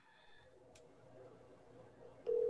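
phone call ringing tone

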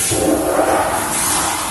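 toilet flushing

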